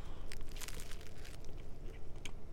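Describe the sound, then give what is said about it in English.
Crisp crunching of someone biting and chewing a club sandwich on fresh, crusty black olive bread, a few bursts of crackly crunch over a couple of seconds with no talking. “So fresh, and the bread is so fresh, and I like that crunchiness.”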